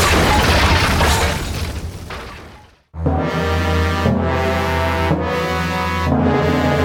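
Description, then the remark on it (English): The burning roof of a blazing barracks crashes down in a loud, roaring rumble of falling debris that dies away over about three seconds, then gives way to bold, sustained orchestral music chords. “As Wheeler and Batman's impersonator rush into the rear of the blazing barracks, risking their lives to rescue their stolen loot, suddenly the roof crashes down upon them”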